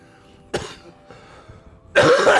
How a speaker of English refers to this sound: I knew that cough was coming.